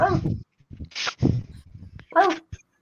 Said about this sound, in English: There's the dogs.